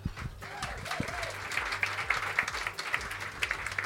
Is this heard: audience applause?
yes